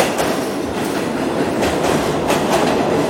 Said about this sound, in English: Gets on the subway. He takes it into Manhattan.